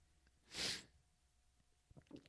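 A single sharp, breathy sneeze bursts out, loud and brief, followed by quiet and a couple of faint, soft vocal sounds.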